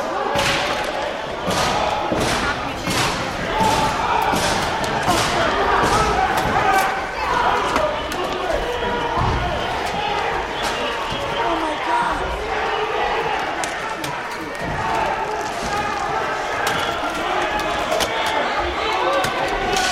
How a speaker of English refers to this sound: And when we were going about exiting in an orderly fashion on what I would say is the Republican side of the Speaker's lobby, we could hear the pounding going on the Speaker's lobby doors.